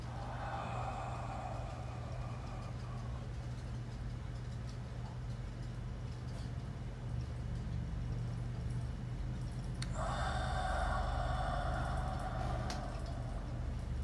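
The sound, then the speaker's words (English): Slow, soft breathing exercise: a gentle breath in at the start, a long quiet pause as it is held, then a drawn-out airy exhale, each step paced to a count of five, all faint over a steady low background hum. “It's where we breathe in, take a breath very slowly, so it takes to a count of five, and we hold our breath to a count of five, and then we breathe out to a count of five.”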